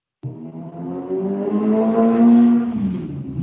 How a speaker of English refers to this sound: I don't know if you heard that motorcycle just like jammed by. I did. Yeah, they're loud.